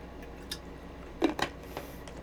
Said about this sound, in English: So I'm going to take a little sip of water and see what comes through.